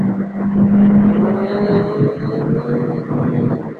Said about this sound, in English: Take that, you bastard. Sorry, doing a little car maneuvering.